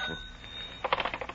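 An old-fashioned telephone bell rings with a fast, rattling trill of strikes. It bursts in after a moment of low background hiss and sounds fairly loud, with no one talking.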